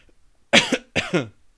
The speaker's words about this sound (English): I'm coughing.